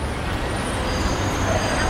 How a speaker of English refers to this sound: That is the sound of traffic on the embankment. Black cabs, London sightseeing buses, white vans.